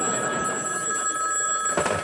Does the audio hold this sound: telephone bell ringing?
yes